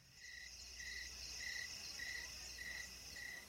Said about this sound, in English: And there's, like, some crowd noises. And then there's crickets.